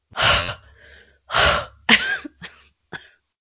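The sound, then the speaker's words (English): An excited female dog breathes loudly right against the microphone in five harsh, huffing bursts, two long noisy exhales followed by three shorter snorting puffs, with no talking. “I think she was like breathing into your microphone.”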